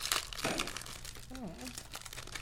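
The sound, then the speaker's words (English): Crinkly plastic snack packaging, cute imitation Hello Kitty-style wrappers, rustles and crackles in quick, uneven bursts while it is opened, and a short rising-and-falling voice sound comes in partway through. “Like little fake Hello Kitty packaging.”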